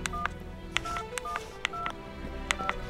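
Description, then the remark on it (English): A series of short electronic telephone keypad tones, about six beeps at an irregular pace, each paired with a sharp button click, clear over a low background hum. “Here's the phone, sir.”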